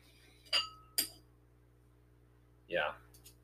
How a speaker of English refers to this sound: sorry. I'm cutting my steak